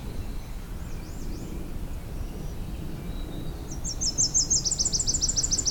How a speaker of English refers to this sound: A really close Nashville warbler.